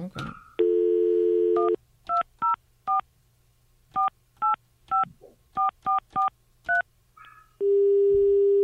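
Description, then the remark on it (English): A steady telephone dial tone, then a quick, uneven series of about a dozen short touch-tone beeps as a number is dialed, and the steady tone returns at the end. No one speaks. “We are unable what? To complete your call as dialed. Is it long distance?”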